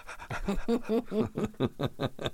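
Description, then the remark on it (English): An animal pants loudly, a quick run of about eight raspy, rhythmic breaths with a slightly voiced, huffing edge and no talking over it. “Well, he just breathes.”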